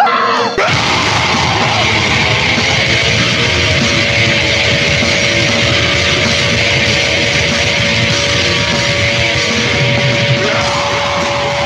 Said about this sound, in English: you get a wrong number, leave your message at the sound of the shriek.